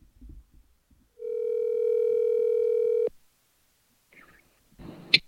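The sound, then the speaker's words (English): A single steady electronic telephone tone rings for about two seconds as a call waits to be answered, then cuts off abruptly, followed by quiet handling noises and a short sharp click near the end. No one speaks. “Hopefully he'll pick up the phone.”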